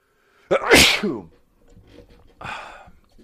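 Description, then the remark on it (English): A single loud human sneeze bursts out sharply, followed by quieter breathy sounds and faint murmuring voices afterward. “I'm going to sneeze, okay?”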